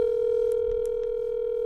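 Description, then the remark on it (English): A steady, continuous telephone dial tone as a call connects, humming at an even, moderate level with faint line noise and a few soft clicks, no voices present. “I did not expect to be getting a phone call from one of Santa's little elves today.”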